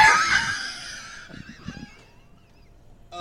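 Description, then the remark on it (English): A loud, nasal goose-like honk used as a censor bleep blares at the start, then trails off into fainter honking blips and near silence. No one speaks over it. “Hold on, let me bleep that.”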